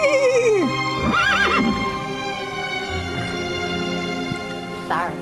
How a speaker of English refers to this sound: Horse says, don't cut my head off.